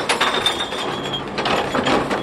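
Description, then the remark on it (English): A City of Chicago recycling truck dumps a blue recycling cart in an alley: a dense, continuous clatter of clinking glass and rattling containers tumbling together, with a thin, steady high mechanical whine running underneath. “Yes, this truck picks up recycling.”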